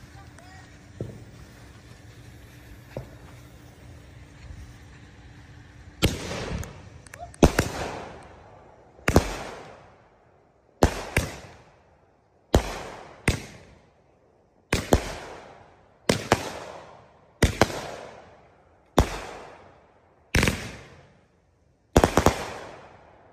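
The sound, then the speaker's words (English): Fireworks set off in a residential neighborhood explode in a rapid series of sharp, loud bangs, roughly a dozen blasts spaced a second or two apart, each trailing off in a crackling decay as particles rain down, after a quiet, murmuring start. “Okay, I know you can barely see me, but apparently my brother had a firework like hidden, and so he just brought it out and he said I should film it.”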